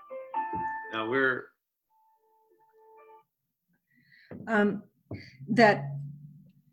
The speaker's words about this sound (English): I should have turned off my phone. Sorry, folks.